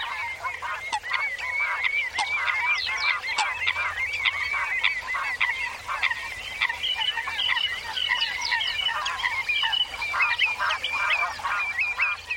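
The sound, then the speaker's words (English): A dense chorus of geese honking over one another at a wetland in Britain, with nasal, overlapping calls that keep up a busy, steady din of wetland bird clamor throughout. No one speaks. Recorded by Richard Margoshis for the British Library National Sound Archive CD Wild Britain. “Richard Margoshis recorded these birds gone wild for the British Library National Sound Archive CD, Wild Britain.”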